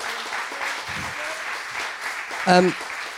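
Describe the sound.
An audience claps in a steady, dense round of applause that fills the whole clip, with a brief voice rising over the clapping near the end.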